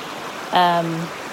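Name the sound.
creek water flowing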